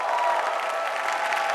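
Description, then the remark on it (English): A crowd claps steadily and loudly as a clap offering to the Lord, a dense wash of overlapping handclaps with no pauses, with no voices standing out above it. “Give the Lord a clap offering here.”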